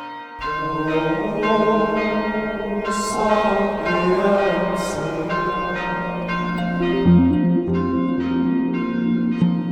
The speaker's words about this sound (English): I've been ringing the bells for over a whole year now.